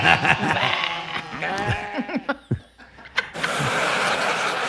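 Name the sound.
sheep bleating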